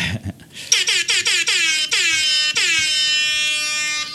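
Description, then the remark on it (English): A blaring rap air horn sound effect, used to break up segments, fires in a rapid series of short, loud blasts, then holds one long sustained note that rings out to the end. “So if this is your first time listening, that was a rap air horn.”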